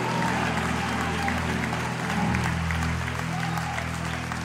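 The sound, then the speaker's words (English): An audience claps and shouts praise to the Lord, celebrating his goodness, in sustained, dense applause, a steady roar of hands and raised voices with a low sustained tone running underneath throughout. “Come on, celebrate his goodness in this place. Come on, give him a shout today. Give him a praise like the water is on the way.”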